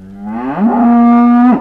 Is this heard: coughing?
no